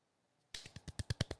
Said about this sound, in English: Do you know why? You know why we're golf clapping right now?